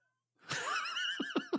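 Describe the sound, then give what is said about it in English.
A horse, among horses fighting, lets out a loud, wavering whinny, trailing off into a few short, sharp snorting bursts. No talking, just the animal's agitated call. “They proceed to have a sword fight with shish kebabs as there's horses fighting in the background.”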